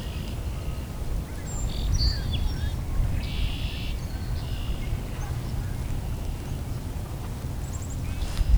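Mallard ducks taking off and flying by, heard as a scatter of faint, short quacking calls over a steady low outdoor rumble, with no one talking.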